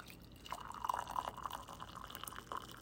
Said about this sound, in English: Now the water is finally boiled. I can like pour it in my cup, let it steep for like 2 minutes or so.